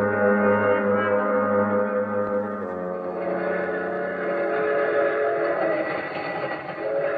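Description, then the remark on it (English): A passenger train rolls steadily along, its continuous rumble loud, with a sustained whistle-like tone sounding over it throughout. No one speaks. “I'll take another look through the train, Mr. District Attorney, if you think that'll help.”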